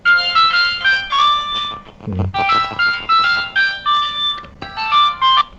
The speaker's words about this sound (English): I'm getting a call, I think. Y'all are gonna have to hang.